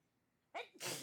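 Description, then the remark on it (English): A single loud sneeze: a sharp inhaled build-up followed by an explosive, breathy burst that fills the quiet. “Bless you.”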